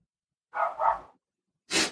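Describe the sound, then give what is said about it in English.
A dog barks a few times in quick succession, fairly loud, with a short pause before a final sharper bark. No one speaks. “That dog. The dog is back.”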